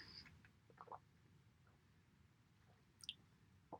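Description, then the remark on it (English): A person takes quiet sips of water, with a few soft wet mouth clicks and a faint swallow, against a low, steady background hum with no talking. “I'm just having a sip of water.”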